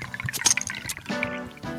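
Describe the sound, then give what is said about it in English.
IPA beer pours into a cup, a steady gurgling splash with bubbly, fizzy trickles that rises in pitch as the cup fills and builds a lot of foamy head, lasting a couple of seconds with no talking. “If you're an IPA drinker, I'm pouring it into a cup.”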